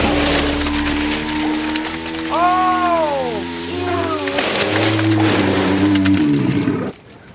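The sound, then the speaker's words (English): A loud, sustained bout of vomiting: a groaning, gurgling heave with tones that rise and fall, over a wet, rushing splatter that runs for several seconds and then cuts off abruptly. “That's a lot of vomit.”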